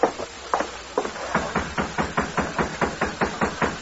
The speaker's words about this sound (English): Riding through vacant lots and alleys, they soon reached the rear of the jail. Oh, steady now. They dismounted and knocked on a back door.